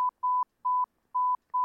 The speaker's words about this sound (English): We can do a thousand things with this beep.